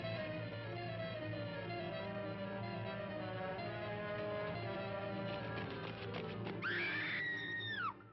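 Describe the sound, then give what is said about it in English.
A sharp, high-pitched scream bursts out near the end, rising and holding before cutting off. It rises over a dense, sustained wash of tonal background noise, with no talking. “When we got close enough, we found out the reason for the scream.”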